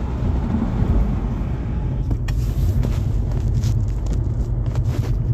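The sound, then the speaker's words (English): Steady, loud road rumble from inside a moving car on Highway 580, with deep low-end drone and tire noise, plus occasional brighter whooshes from speeding vehicles passing in the second half. “I'm on my way home. I'm on this highway. Boy, these people speeding and shit on Highway 580.”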